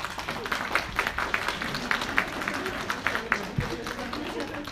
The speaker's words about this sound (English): I think you should all applaud the person to the left and right of you.